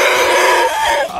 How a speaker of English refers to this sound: And that's the donkey happy. Yeah. I don't want to know what he sounds like when he's pissed.